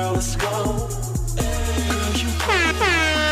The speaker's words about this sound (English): Oh, he got air horns?